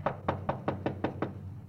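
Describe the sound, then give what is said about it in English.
Police officers knock six firm times on the front door of a house on Byram Street at 8:40 a.m., in a quick, even rhythm, fairly loud, with a low steady hum underneath and no voices. “Front door. Better try it again, huh?”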